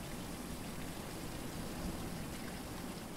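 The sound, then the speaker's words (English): A steady wash of monsoon rain falling in Phoenix, Arizona, a dense, even hiss of drops with no breaks, moderately loud and continuous, with no voices present. “Monsoon season. The time of year where even a few drops of rain can give us reprieve from the sweltering heat.”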